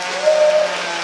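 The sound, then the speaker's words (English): A crowd of thousands of people applauds in a steady, dense wash of clapping with no pauses, while a brief thin tone and a low steady hum sit underneath. “You know, you can see there are thousands of people applauding.”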